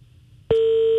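After a half second of faint line hum, a loud, steady telephone busy tone cuts in abruptly as a phone call drops, and holds unbroken to the end, with no voices present.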